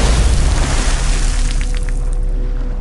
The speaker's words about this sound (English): Meanwhile, Superman tumbles downwards, dropping like dead weight towards the water. Moments later, he crashes into the river with a tremendous splash.